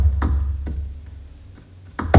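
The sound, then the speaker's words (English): A hand bangs on a glass window, played as a percussion instrument: a few sharp, irregularly spaced thumps with fainter taps between them, over a steady low rumble; the final hit is the loudest. “So I was probably banging on the glass, and Joe was like, oh, that sounds pretty good.”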